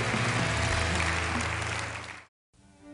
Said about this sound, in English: Let's clap for them as they're seated.